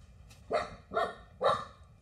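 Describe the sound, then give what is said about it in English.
A dog named Jewel, no longer a small puppy, gives three gruff, evenly spaced barks, each a short rough burst with a low, throaty tone, standing out clearly against a quiet background with no one talking. “that is the lovely Jewel, who is sounding a lot more gruff than she did when she was a smaller puppy.”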